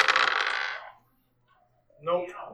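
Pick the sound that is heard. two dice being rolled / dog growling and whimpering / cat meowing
two dice being rolled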